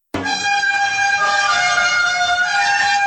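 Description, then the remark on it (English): A single loud, sustained brassy horn blast, trumpet-like, starting abruptly and holding a steady bright tone with strong harmonics for about three seconds, with no talking over it. “It sounds like you're playing a trumpet, which is really weird.”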